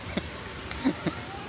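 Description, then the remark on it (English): Three short, nasal honks from waterfowl at a duck pond surrounded by a chain link fence ring out over a steady outdoor background, one early and two close together near the end, moderately quiet. “So there's a beautiful chain link fence surrounding the duck pond, mm-hmm.”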